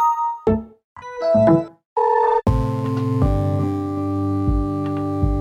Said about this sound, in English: In fact, removing the start sound meant that the UI sounds became even more important. UI stands for user interface. UI sounds are the notifications you hear as you use your computer.